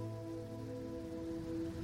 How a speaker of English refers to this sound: As the ocean waves continue to wash ashore,